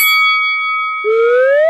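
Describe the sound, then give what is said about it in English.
A single bright bell strike rings out and sustains for about a second, then a loud slide whistle glides steadily upward to the end. No voices, just the two effects. “I feel like you're going to try to, like, squeeze in a bell or a whistle.”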